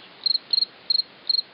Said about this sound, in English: The chirping sound is actually the male cricket scraping one wing over the other to attract a mate. But on a cool evening, say 50 degrees, his chirping is considerably slower.